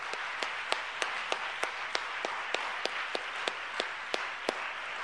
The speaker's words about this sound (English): Thank you for choosing First Pentecostal Church in Silsbee. Everyone that is a member of this church, why don't you give our guest a hand clap this morning?